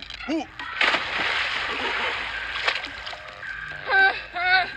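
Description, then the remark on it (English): A big cannonball splash hits the warm water of a swimming pool, followed by a few seconds of sloshing and spray, with excited cartoon voices whooping briefly before and after. “Let's have fun in the pool. Agreed. Cannonball!”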